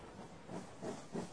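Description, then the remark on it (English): A steady, soft hiss of steam from a train standing at the platform at Reading, swelling in three gentle puffs over a low rumble, with no voices present. “At Reading, as the train stood in the platform, I leapt out and bought a paper.”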